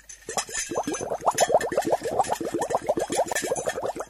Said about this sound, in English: See if you can work out how she made the noise of the winch.